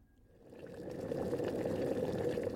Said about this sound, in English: There's a river of boiling blood and it's full of men screaming in pain.